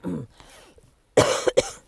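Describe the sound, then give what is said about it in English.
A person clears their throat and then coughs twice in quick, harsh bursts, loud, with no speech, from a tickle in the left corner of the throat. “I got this little tickle right in the left corner of my throat.”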